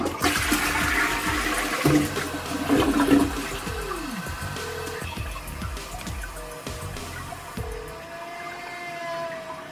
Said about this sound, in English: Every time this person flushed the toilet, it would make a haunting howling sound. And here is what it sounds like.